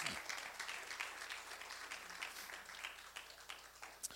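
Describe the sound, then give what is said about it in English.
An audience claps their hands together in a dense, sustained round of applause, giving a hand clap of praise, many overlapping claps blending into a steady crackling wash with no clear rhythm. “Come on, just give them a hand clap of praise.”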